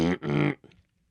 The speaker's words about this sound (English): Okay, got to let out a little burp. Get ready for it.